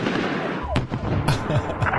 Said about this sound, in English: Loud explosion! Loud explosion! The last one being the largest really lit up the neighborhood with an orange glow. There was white smoke. What? That explosion was another pressure cooker bomb.